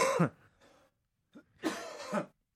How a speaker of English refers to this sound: We love to hear you cough